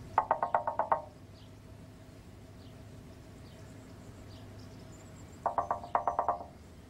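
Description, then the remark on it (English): Two quick bursts of light knocking on a car window, about five or six taps each, one at the start and another a few seconds later, over a low steady hum like an idling car; in the film Two Hands, Jimmy knocks on driver Craig's window. “The confusion of driver Craig, played by Kieran Darcy Smith, as Jimmy delicately knocks on the window, simply never gets old.”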